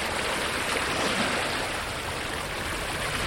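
Water of the Sea of Galilee, the freshwater lake in Israel known locally as the Kinneret, washes steadily against the shore. It makes a continuous, moderately loud rushing hiss with soft churning underneath and no distinct individual laps. No one speaks.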